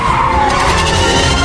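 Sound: car tires skidding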